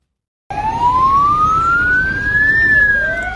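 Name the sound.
emergency vehicle sirens blaring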